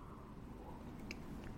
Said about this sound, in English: I do exercises every day, speaking of which I should probably just have another sip of my voice tea while I'm podcasting.